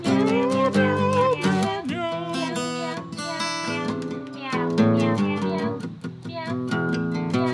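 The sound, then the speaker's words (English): Several voices sing a steady string of imitated cat meows in a tuneful, rhythmic pattern, loud, with sustained pitched notes sliding between syllables. “Can you do meows also? Do you know that? Do you know that syllable? Meow, meow, meow, meow, meow, meow.”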